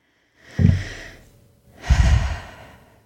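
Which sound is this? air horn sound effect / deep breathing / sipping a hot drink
deep breathing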